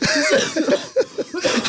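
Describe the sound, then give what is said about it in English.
A short coughing fit from bronchitis, set off by laughing: several harsh, raspy coughs come in quick, uneven succession, fairly loud, with no speech. “Cough.”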